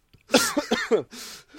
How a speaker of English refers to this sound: Wow, yeah, I made him cough with that one. Sorry, no, I was... yeah, that one kind of took me off guard.